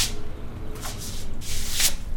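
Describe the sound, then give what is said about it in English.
A broom sweeps storm floodwater out of a garage in the town of Lindsay in a few hissing, splashing strokes over a steady low rumble, with two stronger swishes standing out. “This morning, she's sweeping it out before the next storm hits and throwing out damaged furniture.”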